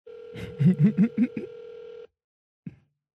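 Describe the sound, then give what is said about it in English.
A telephone ringback tone on an outgoing call to the electronics section of a Walmart store: a steady electronic tone for about two seconds, with a quick run of five beeps over it, then silence and a brief click. “The phone is ringing.”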